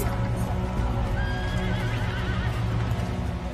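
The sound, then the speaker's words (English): A horse lets out a wavering, high whinny in the middle of a dense, steady rumble, with hooves clopping throughout and no voices. Horses are coming through the surf onto the beach at Mill Bay as Henry's army lands munitions and cannons on 7 August 1485. “Henry's ships drop anchor here, and his men come ashore, and we can picture them heaving munitions onto the beach, cannons, horses coming through the surf.”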